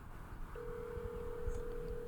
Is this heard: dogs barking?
no